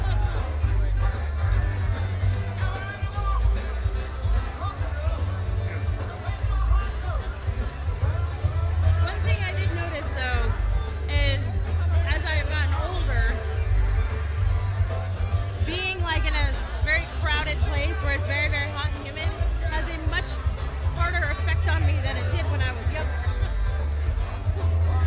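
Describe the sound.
A dense crowd murmurs and chatters all around, with overlapping voices, occasional higher shouts and whoops rising out of the steady hubbub, continuous throughout.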